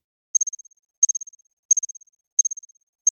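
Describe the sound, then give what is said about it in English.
A reconstructed ancient cricket chirps alone in five evenly spaced bursts, each a quick high-pitched trill of pulses that fade away, with silence between them. “So this is, I don't want to say for sure, but this might be the oldest sound of a living thing ever reconstructed.”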